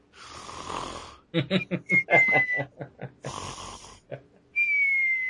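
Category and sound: human body sound, person snoring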